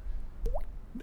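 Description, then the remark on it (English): A person mimics a water drip with their mouth as the 'cling' sound for a 'Shower Thoughts' jingle: one clear rising 'bloop' midway, then a shorter, softer one at the end, fairly quiet with no talking. “Nah, it's like, I wish I knew how to make a raindrop cling.”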